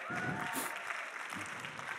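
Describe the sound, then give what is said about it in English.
An audience, asked who had a good Valentine's Day, claps lightly and unevenly for about two seconds, with few claps from the women: a soft, steady patter of hands with a few voices murmuring and calling out underneath. “Uh-oh, come on, there weren't too many claps there from the ladies.”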